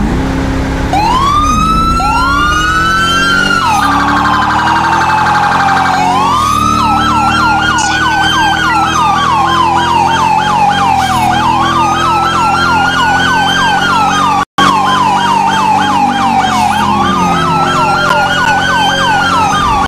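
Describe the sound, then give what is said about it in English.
A loud emergency vehicle siren wails continuously while driving code 3 to a shots-fired call at Route 68, Harmony, sweeping up and down in repeated cycles over engine noise, with a brief abrupt cut partway through. “10-4, I'm gonna be in route code 3.”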